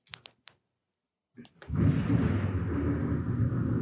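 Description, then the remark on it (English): A few sharp cracks ring out, then after a short silence a deep, loud rumble rolls in and keeps booming steadily: thunder from a storm arriving at a house. “That was ominous. The storm has arrived at my house.”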